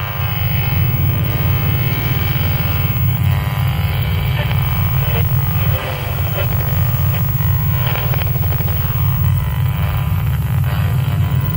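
A steady, deep rumbling drone with a dense, churning texture, like a low roar that hums on without pause, loud and unbroken throughout, with no voices present; the sonified vibrations of the Sun.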